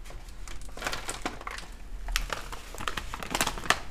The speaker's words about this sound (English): And what I'm looking at today is Ryvita. Ryvita? It's a cracker snack. And I'm about to pick it up. It's gonna be crunchy, crispy sounding. Here we go.